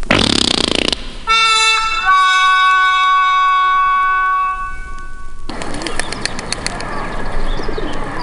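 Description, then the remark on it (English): Someone mimics bird calls with a loud, sustained whistling coo rich in overtones. Bursts of rough, hissy noise come just before and after it. “I can do these bird calls.”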